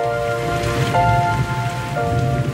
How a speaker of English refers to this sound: Gee, I'm glad it's raining.